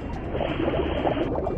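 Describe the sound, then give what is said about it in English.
A steady stream of bubbling water, dense and continuous, like divers' air bubbles gurgling up underwater beneath sargassum, with no voices present. “The bubbles are creating an opening above you, and the sun is shining down through that opening, creating a beautiful shaft of light through their bubbles.”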